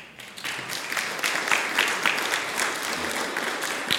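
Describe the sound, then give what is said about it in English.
A church crowd breaks into a round of applause for newly welcomed members, dense overlapping claps rising quickly and holding at a steady, moderately loud level for several seconds with no voices. “And maybe one more round of applause there.”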